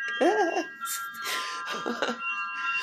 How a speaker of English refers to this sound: Oh my gosh, aren't those wind chimes so beautiful?